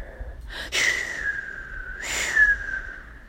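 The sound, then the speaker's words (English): A thin, steady whistling tone of wind holds throughout, swelled by two breathy gusts that rush in and fade, moderately loud and with no voices. “The wind whistled louder.”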